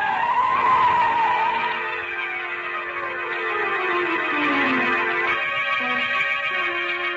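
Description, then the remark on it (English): A car skids hard on a street, nearly running a person down, with a long, loud squeal of tires, the high whine wavering and sliding downward in pitch over several seconds, with engine noise rumbling underneath. “I got here just as that car almost ran you down.”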